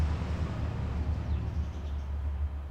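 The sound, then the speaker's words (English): A heavy truck rumbling past in the countryside, a steady low engine drone with a broad wash of road noise that holds at an even loudness throughout, with no voices. “That was a truck going past.”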